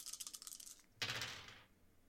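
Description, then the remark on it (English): Three dice are shaken in a hand with a quick, dense rattle, then rolled for a game check, tumbling across a surface with a bright clatter and settling. Fairly quiet, with no voices. “She does not have a point in force, so I'm just rolling a 3 dice.”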